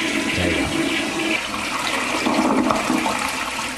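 A toilet flushes loudly, a steady rushing gurgle of water that fills the whole few seconds without pause, with no one speaking over it.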